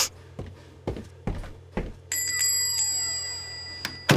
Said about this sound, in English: There was yet another knock on Scrooge's door, and in stepped two portly gentlemen pleasant to behold.